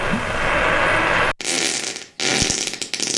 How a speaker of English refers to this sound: No, that's why I was farting on her, because she turned 30.